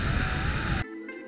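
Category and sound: household object, vacuum cleaner running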